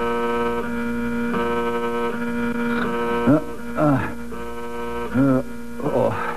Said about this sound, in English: the fire buzzer.